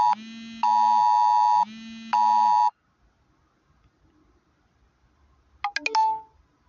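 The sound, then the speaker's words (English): A loud, harsh phone alert tone about the Thanksgiving holiday blares in four alternating bursts for nearly three seconds, then stops; after a quiet pause, a brief electronic chirp sounds. “Anyway, that beep was about the Thanksgiving holiday.”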